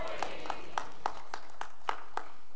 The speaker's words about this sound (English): Thank you for that right there. At least I got one clap right there.